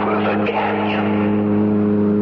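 A car engine hums steadily, a loud, even drone with a deep rumbling tone that holds constant throughout, with no speech over it.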